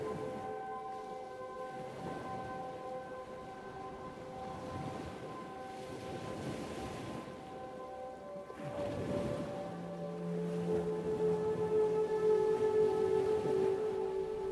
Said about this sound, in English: tuning in to the sounds of the shore's cadence and crashing waves.